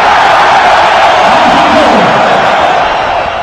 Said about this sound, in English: Looked like a packed house in Edmonton as Bruce got the crowd going